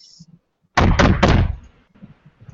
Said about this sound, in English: You hear a knock on the door.